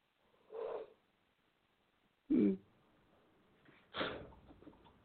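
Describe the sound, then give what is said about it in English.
Breathy yawning sounds: a soft drawn-out exhale, then a sharper louder burst, then a long trailing yawn that fades out, with quiet gaps in between and no talking. “I can't stop yawning.”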